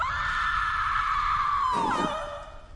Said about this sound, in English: Who screamed? Sounded like something from the movie.